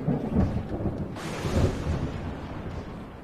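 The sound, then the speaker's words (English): A thunder and lightning sound effect of lightning arcing out: a deep, rolling rumble with a sharp crackling burst about a second in, then a steady roar that slowly fades, with a faint rain-like hiss underneath. No voices. “And then I go try to ram this thing. Lightning arcing out.”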